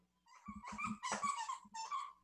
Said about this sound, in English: These dogs are descending into madness.